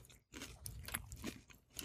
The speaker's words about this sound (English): Habaneros are not too bad. Yeah, we'll see. It's not too bad. So, should we munch now?